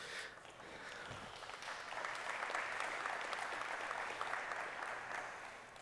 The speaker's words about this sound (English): I appreciate the effort, but that was a weak clap. We got to work on that, son.